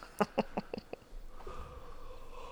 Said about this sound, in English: Stop yawning.